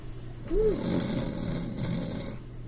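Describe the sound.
A person imitates a single long, rumbling snore of a little halfling, opening with a brief rising-and-falling vocal whine before settling into a steady raspy drone for about two seconds.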